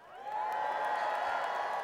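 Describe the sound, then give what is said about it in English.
A church audience shouts for joy together on a count of three, a sustained, loud roar of joyful voices rising quickly and holding steady with mixed whoops and cheers for about two seconds. “Let's hear everybody shout. One, two, three, shout.”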